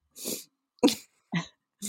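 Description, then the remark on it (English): Four sharp, explosive sneezes in quick succession, brought on by cold weather, fairly loud, each a short breathy burst with brief pauses between. No one speaks. “It's cold weather makes me sneeze.”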